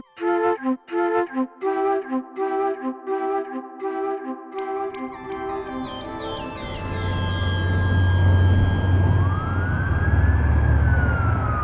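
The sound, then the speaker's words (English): A few seconds of plucked, rhythmic music give way to a police car siren wailing and sweeping up and down, loud over a heavy rumble of engine and road noise, as the police car tails the car carrying Howie Epstein. “When Howie Epstein heard the police siren, he didn't have to look in the rearview mirror to see if it was him that the cop was tailing.”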